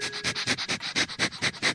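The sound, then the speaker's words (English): Rapid, rhythmic sniffing, about ten quick breathy snuffles in under two seconds, as dogs meeting each other sniff each other's rear ends. No talking. “Yep, they sniff each other's butts.”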